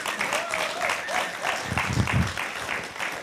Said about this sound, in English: But why don't you, I'm going to ask you to give Pastor Josh a clap as he comes, just as a sign of honor.